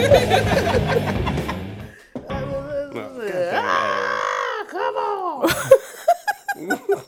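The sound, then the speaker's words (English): A man lets out a loud, drawn-out scream on finding his last Budweiser gone; it rises and wavers in pitch, breaking into groaning, strained cries and short choppy bursts of voice at the end. “That's what that was the scream when he found out all the Budweiser.”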